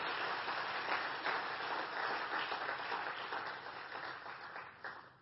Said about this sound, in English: I just feel like we need a clap for God